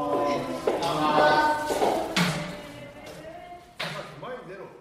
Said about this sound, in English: The shiko is a traditional way to start the practice. The wrestlers kind of stomp with their left foot, then their right foot. Symbolically, this is a way they kind of ward off spirits and maintain the sanctity of the sumo ring.